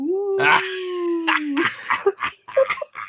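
A mechanic howls in pain after being kicked in his wound, one loud, drawn-out cry holding a steady pitch for over a second, then breaking into short, ragged yelps and gasps.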